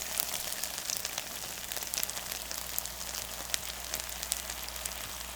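Dumplings sizzling in a pan, a steady hiss of oil full of fast, sharp crackles and pops. Even throughout, with no voices.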